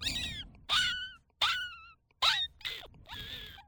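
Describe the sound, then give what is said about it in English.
A human voice imitates a cat yowling inside a bucket as a sound effect: five strained, harmonic meows in quick succession with a hollow, echoing quality, fairly loud, with no other talk. “And somebody would say, hey, I need the sound of a kitty cat in a bucket.”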